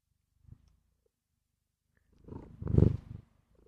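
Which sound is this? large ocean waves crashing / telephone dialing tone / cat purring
cat purring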